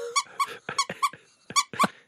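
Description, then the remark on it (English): A new squeaky dog toy being squeezed over and over, giving about eight sharp, high squeaks in a quick, uneven rhythm, loud, with no talking. “I bought our dogs new toys.”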